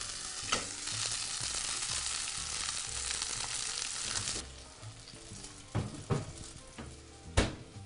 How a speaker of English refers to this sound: So now that we have our onions sweating and just a little bit of olive oil